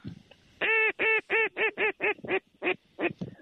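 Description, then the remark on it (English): Geese honk loudly in a quick, steady run of about ten nasal, harmonic calls, each short and evenly spaced, with no voices among them. “Oh, look at the birds.”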